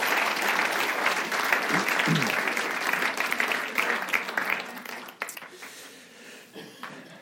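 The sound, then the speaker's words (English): An audience bursts into a sustained round of applause, dense clapping that stays steady for several seconds before thinning out and trailing off into scattered claps. “So I wonder if you could give yourself a round of applause.”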